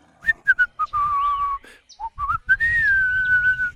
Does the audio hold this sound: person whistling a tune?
yes